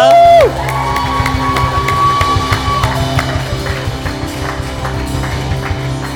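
A crowd cheers and claps steadily for a team member, a loud whoop rising at the start and a long sustained shout held over the dense, continuous applause.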